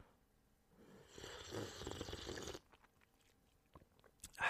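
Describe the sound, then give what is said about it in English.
A drawn-out slurping sip of hot coffee lasting about a second and a half, followed by faint mouth clicks and a sharper knock at the very end. “Taking a sip of my coffee right now, though.”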